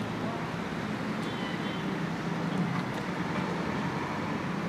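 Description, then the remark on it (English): A steady, unbroken wash of street traffic noise at a road intersection by a bridge in rain, with a low rumble and broad hiss holding at a moderate, even level throughout and no distinct passing vehicles standing out. “Stick with me here while you listen to the sounds of traffic and while I ate, because there's more story.”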